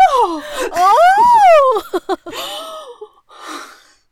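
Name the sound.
dramatic gasp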